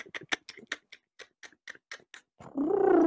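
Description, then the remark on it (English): A raptor gives a quick, uneven series of sharp, dry clicks for about two seconds, then breaks into a loud, sustained, harmonic cry that bends in pitch. “You see a small smile come to his face again, and he opens his mouth to reply to you when his eyes dart to the left, and you hear this clicking, this...”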